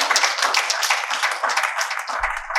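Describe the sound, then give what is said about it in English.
An audience applauds during a sermon with steady, dense clapping that fills the whole clip, many hands overlapping into a bright, continuous patter at a fairly loud level, with a low thump near the end. “So we should at least get two hand claps right there.”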